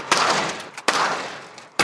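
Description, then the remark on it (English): A door is slammed shut three times in a row to test whether it would break, each bang loud and sharp with a brief rumbling decay, spaced a little under a second apart with no voices. “We tried slamming it over and over again.”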